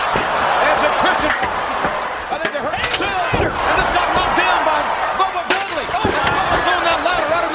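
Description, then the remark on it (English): Sharp, loud impacts of a metal chair striking a wrestler in a double chair shot during a tables, ladders and chairs wrestling match, several cracks in quick succession, over a constant roaring crowd with excited voices throughout. “Not the double chair shot.”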